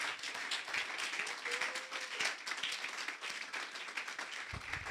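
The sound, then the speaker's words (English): An audience at a sermon claps steadily, the dense mass of hand claps forming a continuous, crackling wash of applause that holds at an even level for several seconds. “You are clapping, clap.”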